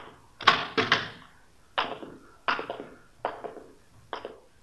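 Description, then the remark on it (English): A hospital patient's room door being worked open, with a series of six sharp wooden knocks and rattles at uneven intervals, fairly loud, with no voices. “You want to open the door?”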